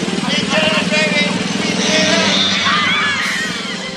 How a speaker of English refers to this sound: Connected the wires and started the machine and was quite oblivious to the fact that he was filling the kitchen with clouds of exhaust smoke.